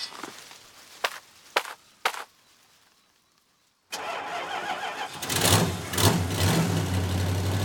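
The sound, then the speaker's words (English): A few sharp thuds and a short quiet pause, then a priest's truck engine cranks and roars to life, settling into a loud, steady rumbling idle. “I borrowed the priest's truck.”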